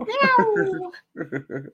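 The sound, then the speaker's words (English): A drawn-out, falling meow rings out loud, likely a human voice imitating a cat to mark National Cat Day, followed by three short voiced syllables after a brief pause. “Well, first off, happy National Cat Day. Meow!”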